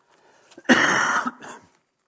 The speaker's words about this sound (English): My cough sounds even worse when I've got a microphone on.